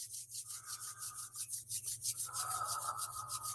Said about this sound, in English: You might want to put your candle aside now, and then go ahead and rub your hands together.